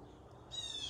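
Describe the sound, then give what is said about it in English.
A single harsh crow caw rings out halfway through, fairly faint, from crows up in a tree outside during a sermon, over a low steady outdoor background with no one talking. “I'm not picking on anybody, but you know what every one of y'all did when those crows went up there?”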